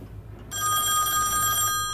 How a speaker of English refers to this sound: It's him. He can make phones ring, he can.